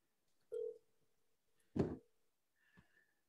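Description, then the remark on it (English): Three short electronic phone tones with clicks, spaced about a second apart, like a call being dialed and connecting. Each tone is brief and moderately loud, with no voices. “come on, pick up the phone, please.”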